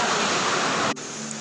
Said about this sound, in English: So it's already raining, so there might have been changes in the audio because of the strong rain, and this happens. I cannot pretend that it's not happening because it's rain. I cannot control it.